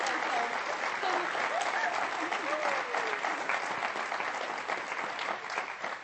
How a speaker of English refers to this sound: Have you been blessed today? Then let's give these guys a big hand of applause.